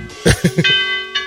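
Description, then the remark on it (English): A doorbell chimes with a couple of quick struck notes, then a sustained bright tone rings out and slowly fades, with another strike starting right at the end. “Or is that the ding dong?”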